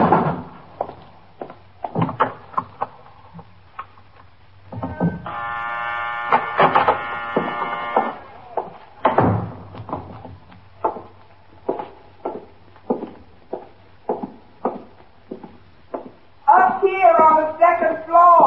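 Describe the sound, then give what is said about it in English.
A harsh electric door buzzer for the locked downstairs door drones for about three seconds, then the heavy downstairs door clunks open, followed by scattered thuds and footsteps, with a voice briefly at the end. “Look, the downstairs door is locked. Can you press the buzzer?”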